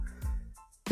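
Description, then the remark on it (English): A sharp, loud sneeze bursts out at the very end after a quiet, low murmuring lead-in, abruptly cut off. “Bless you. Oh shit.”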